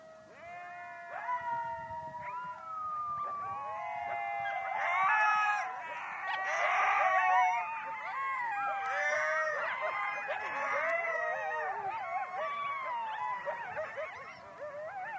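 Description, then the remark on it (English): A chorus of about 200 coyotes, housed in pairs in spacious outdoor pens about the size of a tennis court, howls and yips after a researcher howls first, overlapping rising and falling wails with sharp high yelps, sustained for the whole stretch. “Their howls are bone-chilling, part of their lore.”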